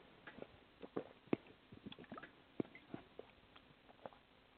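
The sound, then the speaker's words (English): Quiet sipping of water, with a scatter of small wet mouth clicks and soft swallows at irregular intervals. No one speaks. “Let me just take a little drink of water just so my muscle testing is accurate.”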